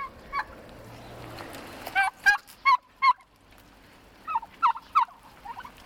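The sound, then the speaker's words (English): Hand-raised, friendly, docile turkeys with blue faces and orangish-red heads gobble in two quick bursts of rapid, warbling calls, moderately loud, with a softer gobble early on and faint farmyard background noise between. “they have a beautiful blue face and an orangish red head. And they're very docile.”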